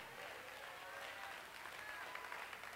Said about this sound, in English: One more time, clap your hands, all you people.